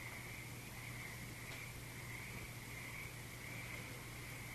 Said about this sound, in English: Let the frogs be in your same space as you.